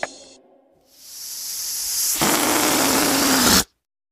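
A balloon's air is let out slowly: a brief squeaky tone gives way to a long, steady hiss that grows louder and harsher, then cuts off abruptly after about three seconds.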